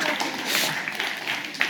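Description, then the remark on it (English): A short burst of hand clapping for a work crew, a dense patter of overlapping claps from a small group, steady and moderately loud throughout with one sharper clap near the end. “You had to start a hand clap for your crew, huh?”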